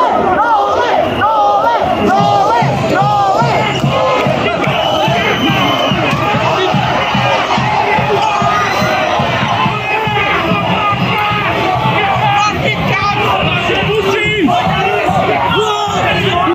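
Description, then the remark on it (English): A large, jubilant crowd of Novak Djokovic supporters, celebrating after a judge announced his decision that Djokovic could go free, cheers and chants loudly and continuously, many voices shouting together in rough rhythm, with no pause in the roar throughout. “And those scenes, that jubilation, later led to police pepper spraying them.”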